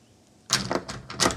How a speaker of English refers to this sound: How does this door open? It's the deadbolt. You have to turn the handle.